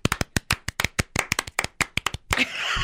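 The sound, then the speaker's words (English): One person claps as fast as they can: roughly fifteen sharp claps in quick succession at a fast, slightly uneven rhythm, ending in a brief burst of noisier, smeared claps. No one speaks. “Here, I'm gonna applaud him as fast as I can.”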